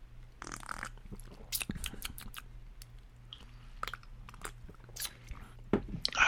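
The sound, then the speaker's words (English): Someone sips a creamy frozen lemonade drink, a lemon frosty, with short wet slurps, lip smacks and small mouth clicks scattered over a few seconds and no talking. “But go ahead and have your sip.”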